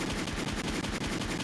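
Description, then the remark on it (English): A rapid burst of gunfire sound effect, loud and continuous, with shots rattling off in quick succession like an automatic weapon, and no voices over it. “Bring it out, gunshots.”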